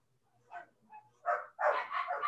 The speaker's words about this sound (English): And why are my dogs having a shit fit right now?